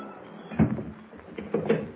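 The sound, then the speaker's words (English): The door of a broken-down shack in the jungle swings shut with a muffled thump, then a bolt is slipped closed with a couple of short knocking clicks, with no one speaking. “Close the door and slip the bolt, eh?”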